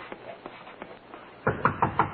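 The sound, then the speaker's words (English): Police officers knock firmly on a door, first several softer raps in a loose rhythm, then four louder, heavier bangs near the end. “Open up or we'll break in the door.”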